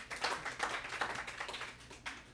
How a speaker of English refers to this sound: A round of applause for them.